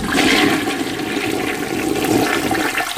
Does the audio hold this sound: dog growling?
no